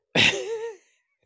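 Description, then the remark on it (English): A single sharp, loud sneeze: a sudden breathy burst followed by a short voiced, wavering tail, then quiet. “Kelsey says, OMG, is that your real sneeze?”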